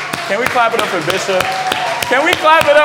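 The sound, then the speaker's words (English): An audience claps for the Bishop in a steady, fairly quick rhythm, sharp loud claps repeating about three times a second, while voices call out and whoop over the clapping throughout. “Can we clap it up for Bishop?”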